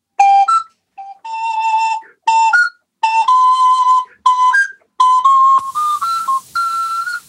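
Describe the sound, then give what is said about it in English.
A Suzuki Andes ocarina keyboard plays a bright, airy melody in short phrases of held and quick notes, with brief pauses between, sounding alone with a breathy hiss toward the end. “Is an accordion melodica? It's an ocarina keyboard.”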